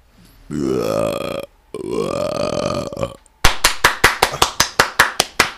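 Two long, low, croaking burp-like vocal sounds are followed by a quick, steady run of about eleven sharp hand claps, loud and crisp, with no talking over them.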